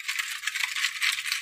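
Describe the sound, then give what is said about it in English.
A spoon stirs briskly in a container of food mixed with water, making a steady run of bright metallic clinks and scrapes with a loose, repeating rhythm. No one speaks. “I'm stirring it with my spoon.”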